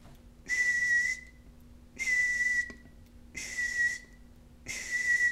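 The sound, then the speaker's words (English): A bus backing up: its reversing alarm sounds four steady, evenly spaced high-pitched beeps, each about a second long with a hissy edge, repeating alone with no talking. “That was the bus backing right up.”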